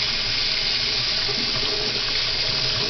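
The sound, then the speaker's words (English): A kitchen tap runs extremely hot water in a steady, unbroken, fairly loud stream of splashing as a spoon is rinsed beneath it to sanitize it. No voices are heard. “Perfect sanitization of the spoon there. You just got to use extremely hot water, right?”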